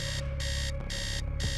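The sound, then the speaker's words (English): Sinedu's alarm clock beeps sometime before 8 a.m. in rapid repeating bursts, a bright electronic pulse sounding about twice a second over a steady hum, fairly loud with no voices. “Either way, sometime before 8 a.m., Tao was awoken by the beeping sound of Sinedu's alarm.”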